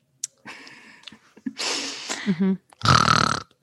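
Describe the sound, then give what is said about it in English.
Three rough, rasping snores in a row, each a harsh noisy rumble with a brief pause between, the last one the loudest and fullest, with no talking over them. “That was a snore.”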